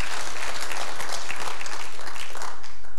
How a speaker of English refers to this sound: You may not feel him, but God sees you. And he knows you. He knows you. Yeah, come on, clap for that. Don't be shy. This is Hope Church, right?